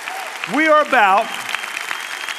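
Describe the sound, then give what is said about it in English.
Steady applause from a church audience at Fellowship, clapping for those baptized there, fills the whole stretch, a dense patter of clapping, while two loud pitched whoops from the crowd rise and fall over it near the start. “Let's give them a crazy round of applause because that's what we're about.”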